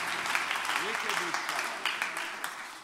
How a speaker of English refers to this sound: Give the Lord a hand clap of praise as you're being seated.